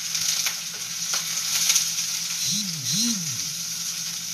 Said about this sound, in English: Trying not to crack the yolk. A good fried egg with the yolk uncracked is mwah.